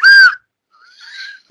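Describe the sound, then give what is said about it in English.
A whistle is blown twice: first a loud, short, shrill blast, then after a brief pause a softer, wavering, breathier toot. No one speaks. “I got a whistle.”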